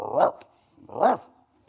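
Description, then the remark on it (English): A person's voice imitates a dog barking and growling, giving two loud barks about a second apart, each a short harsh yelp that rises and falls, with brief quiet between them. “She looked at me and she started barking. Growling.”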